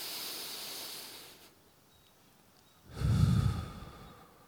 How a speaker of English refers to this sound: All you're going to do is when you're going across, you're going to slow it right down to start, right? When you go across, breathe in through your nose. And when you go up and down, breathe out through your mouth.